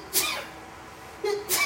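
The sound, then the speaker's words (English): Two quick, sharp sneezes about a second and a half apart, fairly soft, with a brief breathy intake just before the second one. “Bless you.”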